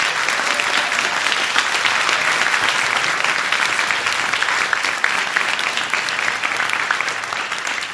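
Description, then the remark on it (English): Sustained audience applause for the producers, a dense steady wash of many hands clapping at an even, fairly loud level throughout, with no voices rising above it. “We're actually going to be wrapping up now, and I actually wanted to give a huge round of applause to all these amazing producers.”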